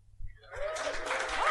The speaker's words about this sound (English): Give me a round of applause if you are from Leeds itself or very close by.